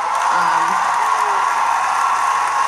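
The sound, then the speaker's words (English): Steady audience applause fills the whole stretch, a dense, even wash of many hands clapping at once with no pauses, joined by a faint voice or two underneath. “Men, you can clap too.”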